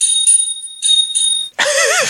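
A bicycle bell rings three or four times in quick succession, its bright metallic tone hanging on between strikes, then a loud, wavering squeal-like sound cuts in at the end.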